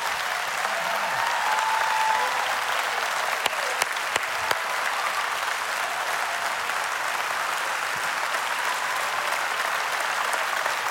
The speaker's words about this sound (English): Out of nowhere, like nowhere, like it wasn't like, and so you can clap now. You can clap now, okay.